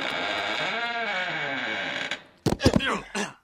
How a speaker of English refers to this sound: They're opening the doors.